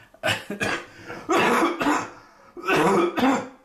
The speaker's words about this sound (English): I promise this is just allergies and the same cough I've been fighting for a month. I'm not sick.